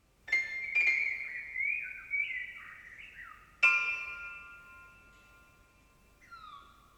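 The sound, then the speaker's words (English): Bird-like whistles and chirps glide and warble in a high register, punctuated by two sharp struck attacks that ring and fade, with a final descending chirp. The piece is Jonathan Harvey's Bird Concerto with Piano Song, composed in 2001, which uses samples of 40 Californian songbirds. “It's called Bird Concerto with Piano Song.”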